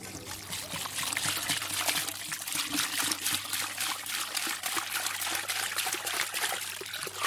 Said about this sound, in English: We'll start with impeke. I pour the boiled water into the flour that I've kneaded with the water before. I mix it using my hand.